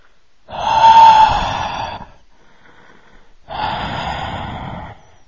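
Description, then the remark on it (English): Someone imitates creepy heavy breathing, the kind left as an answering machine message: a long, loud, raspy inhale of about a second and a half, a short pause, then a second rough breath, wheezy and noisy, with no talking. “it's really creepy breathing in there.”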